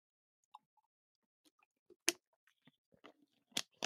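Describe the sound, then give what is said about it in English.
Someone takes a quick sip of water: soft, scattered wet mouth clicks and a couple of sharper gulping swallows, quiet in between, with no talking. “So anyway, let me take a quick sip of water, actually.”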